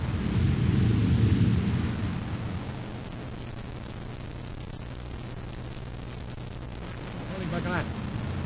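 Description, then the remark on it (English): A deep, rumbling explosion swells loudly for about two seconds, then settles into a steady low drone with a faint whooshing sweep near the end, like a spaceship blast in a sci-fi effect. “It worked, Your Highness. I just saw the explosion.”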